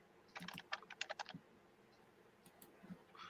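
A quick burst of keyboard typing, about a dozen crisp clicks in fast succession, then a short pause and a few more scattered keystrokes. Fairly quiet, with no voices.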